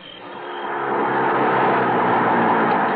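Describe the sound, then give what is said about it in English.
A car pulls off Highland, just before the Hollywood Bowl, into the drive of an old Mediterranean Spanish-style apartment building: a steady, broad engine and tire rumble swells over the first second, then holds at an even level, with no voices. “Just before the bowl, I pulled into the drive of the old Mediterranean Spanish-style apartment building where I lived.”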